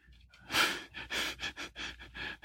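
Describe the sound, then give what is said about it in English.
A pet dog panting in quick, steady breaths, a rapid rhythm of soft, breathy huffs about three per second, moderately loud, with no one talking. “Can hear my dog.”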